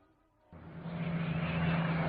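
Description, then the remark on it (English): A steady, loud drone of fighter plane engines fades in abruptly after a half-second of near silence, then holds as a dense, sustained roar with a low humming tone, as propeller fighters fly high over the Salween River. “The next morning found the members of the Hell's Angel Squadron grouped together high over the Salween River, looking for a convoy of Japanese troops reported working their way north.”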